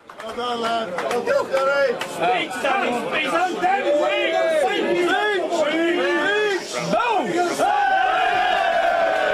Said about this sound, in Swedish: Och han går upp och liksom ska ta emot och folks jubel. Och folk skriker speech, speech, speech.